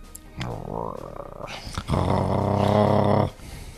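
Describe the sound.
A voice imitates a low, menacing, ominous growl from outside a door in two rumbling bursts, the first shorter and rising, the second louder and sustained for over a second before cutting off.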